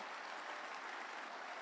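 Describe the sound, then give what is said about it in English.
An audience claps together in a steady, dense wash of applause, loud and even throughout with no voices rising above it. “Clap unto the Lord.”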